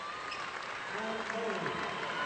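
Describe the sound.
Steady applause from a modest crowd of Centerville folks, mostly family members, at a basketball game, applauding a senior player; a dense patter of clapping that swells slightly midway, with a man's voice talking over it.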